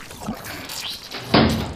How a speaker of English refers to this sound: Door's open. Thank goodness, this worked.